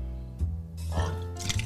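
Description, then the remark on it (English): A short pour of vodka from a giant bottle into a glass, with a brief splashy trickle and soft liquid noise lasting under two seconds. “A little splash there.”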